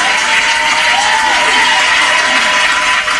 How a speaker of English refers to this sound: Let's go ahead and give him a round of applause.